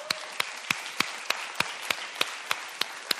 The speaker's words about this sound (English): All right, we can give it, we're going to clap. Let's clap for them.